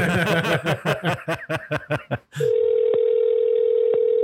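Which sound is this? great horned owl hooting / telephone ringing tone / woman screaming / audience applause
telephone ringing tone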